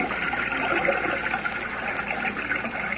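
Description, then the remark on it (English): Steady rushing water flows continuously throughout, a dense, even wash of river current flowing above ground beyond a waterfall, with no pauses and no voices, moderately loud. “Evidently, this river does flow above ground beyond the falls.”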